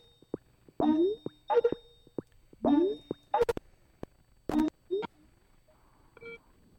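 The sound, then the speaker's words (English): A phone call ringing tone plays clearly while redialing a caller after a lost connection: a series of short electronic chiming bursts with bright beeps, repeating in an uneven rhythm before fading to quiet. “So we're calling.”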